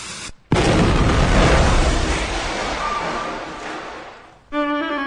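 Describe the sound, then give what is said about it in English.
A sudden, loud explosion as a box is lit bursts after a brief silence, its rumbling roar slowly fading over several seconds before a bright sustained musical tone cuts in. “Can I light another box? Sure. Fire in the hole!”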